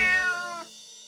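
A single loud, close cat meow with a bright, harmonic tone that rises then trails off, followed by a faint lingering tail; no voices.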